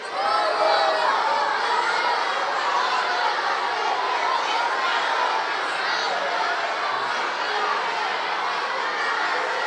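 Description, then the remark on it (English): A large group of boys shouts out at once, a loud, overlapping jumble of young voices calling out the names of brands they recognize in a picture, continuously for several seconds, with scattered laughter mixed into the din. “Yeah, okay, yell out which one you recognize.”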